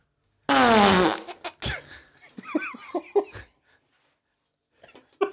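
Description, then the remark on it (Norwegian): A loud, buzzing mouth-made fart imitation bursts out for about half a second, followed by a short burst of laughter and chatter from several voices. “Hvordan klarer du å kopiere en fis på den måten?”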